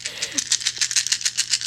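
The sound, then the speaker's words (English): Eight dice, three positive and five negative, rattle in a rapid, steady series of bright clicking clatters, about a dozen quick shakes in under two seconds, over a faint low hum. “Okay, so we have a measly three positive die against five negative dice.”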